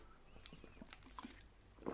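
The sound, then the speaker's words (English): Someone quietly sips water, with soft wet mouth clicks and small slurping sounds scattered over two seconds and a slightly fuller gulp near the end. No one speaks. “I'm just going to let that marinate while I take a sip of water, because hydration is key as well, but that's another matter.”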